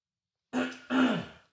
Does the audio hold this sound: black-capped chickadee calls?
no